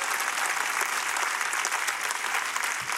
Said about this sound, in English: Come on, give God a good hand clap offering.